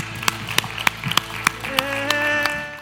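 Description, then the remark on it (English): A church audience claps for those who raised their hands, a steady rhythm of sharp beats roughly three per second, over sustained tones of music, with a few voices murmuring underneath. “Come on, church. Can we clap for the hands that went up?”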